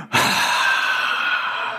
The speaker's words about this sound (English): Listen, everybody, let's do a little exercise this morning. In your seat, kind of stretch out like this. Take a big yawn.